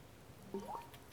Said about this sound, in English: So, water sip.